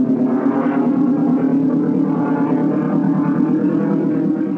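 The Millennium Falcon spaceship from Star Wars cruising through hyperspace: a loud, steady drone with a deep hum and a faint wavering shimmer on top, sustained throughout with no voices.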